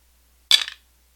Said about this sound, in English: So I'm going to roll some dice here so that we can make some predictions, and then we'll go over all of our previous predictions and see where we stand.